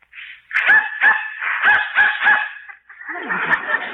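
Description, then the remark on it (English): A dog barks several times in quick, uneven succession in response to a dog whistle that humans cannot hear, sharp and fairly loud, then trails into a rougher, noisier yelp near the end. No one speaks. “Dog heard it, but I didn't.”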